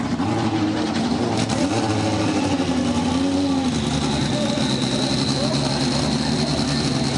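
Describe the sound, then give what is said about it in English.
A field of 11 race cars with AER engines starts up at WeatherTech Raceway Laguna Seca, the engines rumbling and droning together at a steady, loud volume. Pitch shifts as some rev up, forming a dense mechanical roar. “So the field of 11 roared to life here at WeatherTech Raceway Laguna Seca.”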